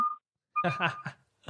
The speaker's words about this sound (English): I'm gonna pause because of this beeping of this okay Amazon Prime truck. I think it's actually my package.